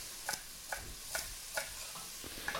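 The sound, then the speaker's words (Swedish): Steady knife chops on a cutting board as bundled thin sticks of stalk celery are finely chopped, about six crisp taps at an even, unhurried pace, fairly soft, with no one talking. “Bunta ihop stängerna, selleristängerna, och hacka dem fint.”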